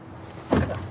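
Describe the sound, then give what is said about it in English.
A car's standard power door locks engage with a single quick mechanical thunk, moderately loud, settling into a short muffled rattle against a quiet background. “Power door locks. Standard, of course.”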